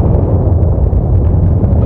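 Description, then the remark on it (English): A deep, continuous rumble fills the whole stretch, heavy low-end roar with a grinding, churning texture and no break, like the ground shaking during a volcanic earthquake. “Another earthquake.”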